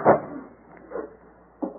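A door swings shut with a solid, muffled thump, followed by two softer knocks spaced out over the next second and a half. No one speaks.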